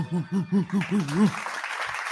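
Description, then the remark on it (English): A live crowd breaks into steady clapping and cheering for the artist ahead of his feature beat set, led off by a few rhythmic, rising-and-falling vocal whoops before the noisy applause swells and holds. “Everybody in the jungle, make some fucking noise for … one time.”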